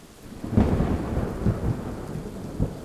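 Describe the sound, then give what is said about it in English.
Heavy rain drums steadily on the thatched roof of a tiny house in late summer while deep rumbles of thunder roll underneath, swelling near the start and again toward the end of a continuous stormy wash. “Water poured onto the thatched roof with the force of dropped stones, as if nature itself were intent on the hovel's destruction.”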